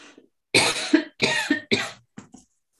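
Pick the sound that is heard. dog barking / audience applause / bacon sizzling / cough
cough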